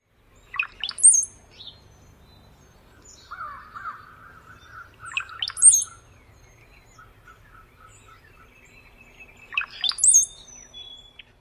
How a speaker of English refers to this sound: Those crazy sounds were brought to you by none other than the brown-headed cowbird. The male song sounds like gurgling water, followed by thin, sliding whistles.